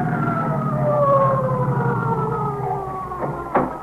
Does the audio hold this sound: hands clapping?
no